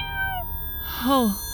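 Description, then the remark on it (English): A cat meows twice: a short, thin, falling call, then a louder, drawn-out meow that rises and dips. A low steady hum runs underneath, and no one speaks. “It's a horrible family legacy, and it's fallen to me to do something, and then the only person that can help me isn't even a person. It's a cat.”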